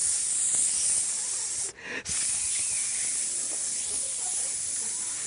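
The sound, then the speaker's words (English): An Axe men's aerosol body spray hisses out in a long, steady burst, briefly stops, then continues spraying for several more seconds. No one speaks. “It's like a body spray for men. And he sprays on the Axe, and he's like spraying.”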